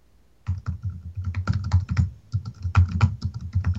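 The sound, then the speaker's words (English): Rapid, forceful keystrokes clatter on a computer keyboard, a dense uneven burst of loud clicks and thuds starting after a brief silence and continuing without talk. “I literally couldn't tell if that was you typing”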